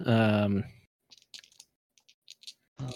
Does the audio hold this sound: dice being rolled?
yes